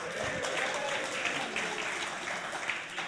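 A crowd claps steadily, a dense, even patter of many hands holding a constant level for a few seconds with no voices standing out.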